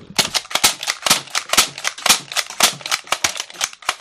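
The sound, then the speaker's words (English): A rapid string of sharp plastic clicks and pops from a toy dart gun firing repeatedly, about a dozen snappy shots in quick, slightly uneven rhythm, bright and fairly loud with no talking. “Yeah, but now you just lost every bullet. I'm down to one gun.”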